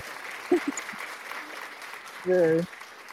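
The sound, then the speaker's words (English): A brief, soft applause sound effect: a light patter of clapping lasting a few seconds, with a short spoken voice cutting in near the end. “A tasteful applause.”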